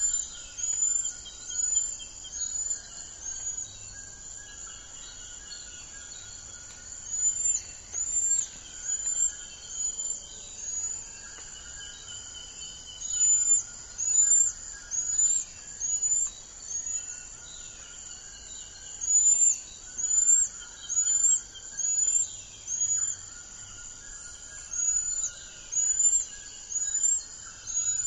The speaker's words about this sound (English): Once down to 200 individuals in the wild, intensive conservation efforts have helped the population recover. An endangered species, there are only about 3,500 golden lion tamarins in the wild. And hear the sound of the golden lion tamarin.